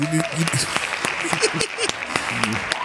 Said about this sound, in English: Hand claps.